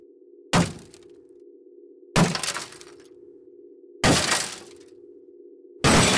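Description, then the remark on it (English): Four loud smashes of mirrors being broken with a bludgeoning object arrive roughly every two seconds, each a sharp crash of shattering glass with tinkling fragments trailing off, over a steady low hum in the background. “All right, so you guys start smashing mirrors.”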